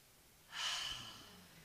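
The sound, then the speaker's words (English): A deep breath drawn in and let out as a breathing exercise, a soft breathy rush that swells quickly and then slowly fades, with no talking. “How do we change our autonomic nervous system? Breathing.”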